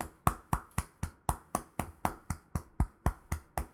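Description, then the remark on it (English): A single person claps their hands manually in place of a missing soundboard applause effect, in a steady, brisk rhythm, about fourteen sharp, crisp claps at roughly four per second, with no talking. “Guess I have to manually clap for him.”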